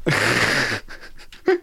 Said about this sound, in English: Sorry, I got to backtrack real quick. I literally yawned. You did literally yawn.